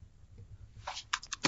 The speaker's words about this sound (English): Rolling dice.